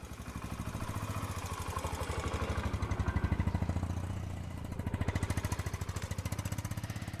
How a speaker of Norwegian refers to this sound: Du kjenner kanskje igjen denne lyden, denne motorsykkellyden. Og I Malawi er det en livsviktig lyd.